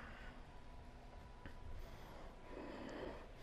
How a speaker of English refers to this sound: And every day I get on my mat, I need to be really intentional about pulling the air in and pushing it out. There's a priming process.